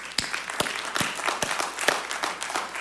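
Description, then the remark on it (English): An audience applauds: dense, steady clapping from many hands blends into a continuous crackling wash, with a few sharper individual claps standing out, and no one speaking over it. “We ought to applaud.”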